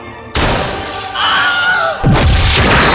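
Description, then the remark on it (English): An explosion blowing the door off a safe: a sudden loud blast bursts into sustained roaring noise, a high whine sliding downward through the middle, then a second heavy boom hits with a deep rumble. “We've got 10 seconds to blow the door off this safe.”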